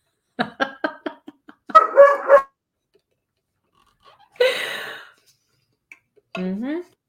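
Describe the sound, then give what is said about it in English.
A dog makes a string of short yips, then longer warbling whine-howls with rising pitch, sounding almost like it is trying to talk. The sounds come in separate bursts with brief silences between. “See, it's hysterical because these dogs talk back to him all the time.”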